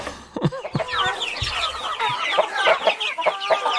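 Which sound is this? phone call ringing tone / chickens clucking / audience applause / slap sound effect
chickens clucking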